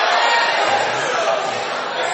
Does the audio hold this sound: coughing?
no